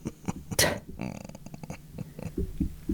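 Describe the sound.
A low beer belch rumbles out over a few seconds, gurgling and uneven, with a sharp breathy burst early on and some voice noises around it.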